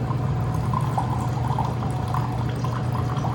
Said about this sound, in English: So I'm just going to pour this just a little bit in each one of these glasses to see where we are.